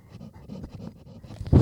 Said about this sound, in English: Dogs, don't let the dog lick the microphone. Sorry, she was chewing on her foot. I had to stop it.